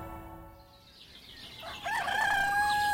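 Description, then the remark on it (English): A rooster crows loudly and sustains a long, bright cock-a-doodle-doo, following softer background clucking and chirps from a flock of laying hens on a small farm holding in Normandy, western France, with no talking. “On the way to Western France, in Normandy, lies a small holding where this farmer has been raising laying hens for 5 years.”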